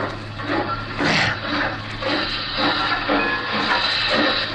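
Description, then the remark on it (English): A steam locomotive on railroad tracks below a bridge hisses steadily, a broad rushing roar with surging bursts of steam and a low rumbling undertone, fairly loud, with no voices. “Jump on the tender of that engine below us.”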